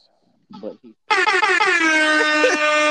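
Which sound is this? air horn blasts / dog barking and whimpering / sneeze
air horn blasts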